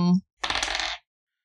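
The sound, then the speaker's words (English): A short clatter of dice tumbling across a hard table, a busy rattle lasting about half a second, fairly loud, just after a brief voiced sound. “Rolling that dice.”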